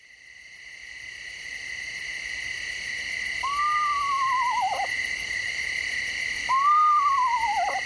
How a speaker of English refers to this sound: You might say the eastern screech owl lives up to its name with its range of calls, including the whinny. Lang Elliott of Nature Sound Studios recorded these wise beyond their ears sounds.